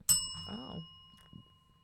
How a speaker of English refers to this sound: Oh. Why'd you hit the bell?